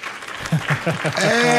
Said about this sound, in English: Yeah, there's a lot of applause.